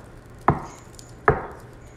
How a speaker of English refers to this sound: At this point, you sort of hear her, like, knock underneath the counter.